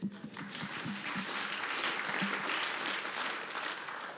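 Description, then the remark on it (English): A crowd applauds steadily, a dense wash of many hands clapping at an even loudness for several seconds, with a few brief low murmurs or voices at the very start. “I'll clap to that.”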